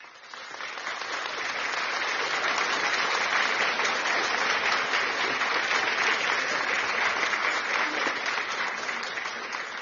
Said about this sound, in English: So, people of God, with a round of applause, let's welcome the man of God to take over.